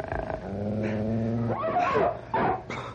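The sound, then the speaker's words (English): Wolves growl, a low steady rumble swelling into sharp, vicious snarls in quick bursts, loud and menacing, with no one speaking. “Come on, wolves! I'll fight you with my bare hands if I have to!”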